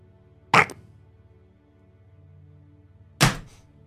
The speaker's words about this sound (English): Is that the sound of her phone dropping? Yes.